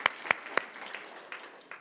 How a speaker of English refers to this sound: Clap or raise your hand. We raised our hand. Now let's clap.